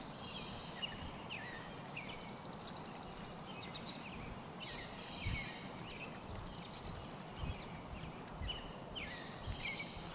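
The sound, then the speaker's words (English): A bird sings a series of short, repeated warbling phrases at a middling-high pitch, recurring every second or two over a steady background hiss and low rumble, heard on a morning walk. “A lot of top tier birds, I think, really, song wise.”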